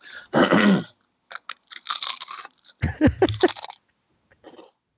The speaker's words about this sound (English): just crunch a little bit more into the mic.